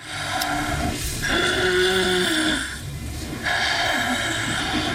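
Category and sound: human body sound, snoring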